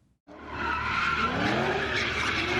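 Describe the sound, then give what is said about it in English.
Car tires screech loudly and continuously after a brief quiet start, a sustained high squeal with engine roar underneath as a vehicle skids and spins at an illegal sideshow taking up an intersection in San Jose, Silicon Valley, with smoke in the air. “We've heard of illegal sideshows taking up intersections with tires screeching, skid marks, and smoke in the air.”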